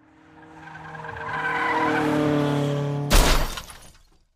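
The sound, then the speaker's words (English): A car's tires screech in a long, rising skid for about three seconds. Then a loud crash of impact and shattering debris abruptly cuts it off as another car strikes the car of a driver who fell asleep at the wheel. The sound fades quickly. No one speaks. “a car came out of nowhere and whacked us.”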